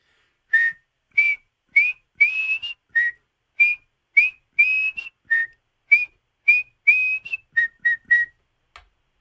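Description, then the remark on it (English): A single person whistles a rhythmic chant melody: about fifteen short, clear whistled notes in a quick, steady pattern, imitating the whistle chant of Rangers fans heard at the Rock. “…, let me hear the whistle.”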